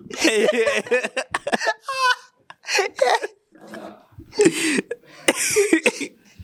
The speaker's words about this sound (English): One person got COVID. Why are you coughing my way, bro? You have COVID, bro.